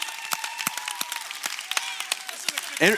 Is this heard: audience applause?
yes